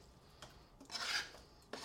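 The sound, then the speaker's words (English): A knife or spatula scrapes chopped chicken off a cutting board into a pot sprayed with nonstick cooking spray, one sustained rasp lasting about half a second, bracketed by brief, softer scuffs before and after. No one speaks. “Into the sprayed pot, you just scrape all that chicken off your cutting board and into the pot.”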